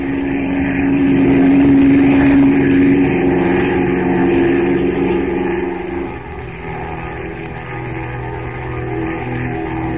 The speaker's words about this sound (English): And while a pilot gets the plane started, Kent attaches two rope ladders to the wings. Then the plane roars up from the river, the two ladders dangling below it, and heads for the Temple of Ashta.